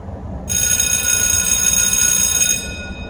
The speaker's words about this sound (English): Hello, everybody. I'm here. That's the bell.